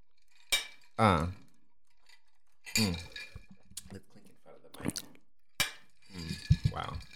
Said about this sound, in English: Wow, we haven't done a clink in so long. Okay. Come on, let's get it. Cheers to water.